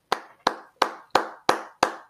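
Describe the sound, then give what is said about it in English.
A single person claps six times in a steady, even rhythm, each clap a sharp, bright crack with a short decay, with no voices in between. “I'm going to clap again for that, okay?”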